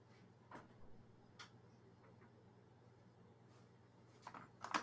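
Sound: door being opened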